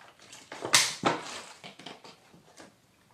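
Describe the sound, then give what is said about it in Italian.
Someone sipping water, with a burst of crackly, crinkling noise near the start and a string of softer clicks and rustles afterward. No one speaks. “Adesso bevo un goccino d'acqua perché c'ho sete.”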